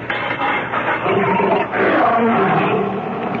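A lion, loose outside its cage in Pompeii, roars loudly and continuously, a deep, rumbling growl that swells and surges for several seconds, with no voices over it.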